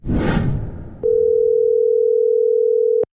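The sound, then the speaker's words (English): A burst of rustling, crackly noise gives way to a single steady electronic ring tone that holds for about two seconds, an outgoing phone call to Nikki Haskell ringing on the line. “So, babe, we called Nikki Haskell.”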